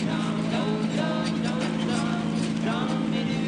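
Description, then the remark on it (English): A car engine runs with a steady, loud, low drone that holds constant throughout as the driver works its heavy clutch, while indistinct voices murmur faintly over the rumble. “Takes a lot of strength to depress this clutch.”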